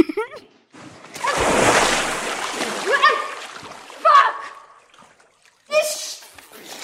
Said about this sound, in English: And dumps her in an ice-cold bath. Can you imagine being dropped into a tub full of cold-ass water like that? That'll wake you up.